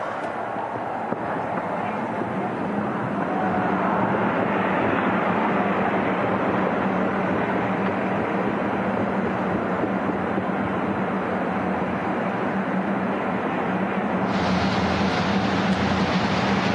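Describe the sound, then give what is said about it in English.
A dense, steady roar of a field of 27 IndyCar race car engines starting up together on pit road before a race, loud, holding at a constant rumbling intensity throughout with a brighter edge coming in near the end. “Field of 27 starts to roar to life on pit road as we get ready for the XPEL 375.”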